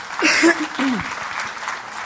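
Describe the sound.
An audience claps steadily in a dense, even wash, with a couple of brief high voiced cheers rising over the start before the clapping carries on alone.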